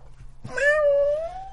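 A single drawn-out meow from a female cat, clear, rising then sliding gently downward and holding for about a second with no talking over it.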